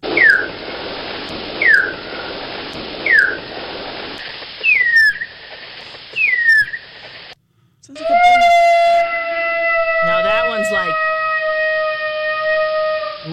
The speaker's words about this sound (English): And then there'll be a little break, and then you're going to hear some like kind of yelping. And that means, oh, I'm hot for you. Like lovey-dovey sounds, all right? So here's like mice in happy state.